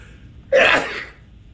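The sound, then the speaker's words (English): A single sharp sneeze bursts out, a quick explosive blast with a breathy tail that fades within about half a second, set against faint background hiss. “And finally, here is sneeze number five.”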